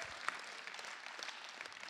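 A crowd applauds steadily, a dense wash of many hands clapping at once with a few sharper individual claps standing out, sustained and fairly even in loudness throughout.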